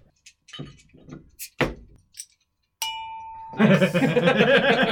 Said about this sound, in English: Ring the beer bell.